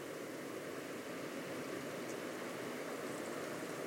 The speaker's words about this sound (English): So here you can hear the sound of wind whistling around the dunes. And then eventually the sound of the birds waking up and creating a dawn chorus as the storm abates.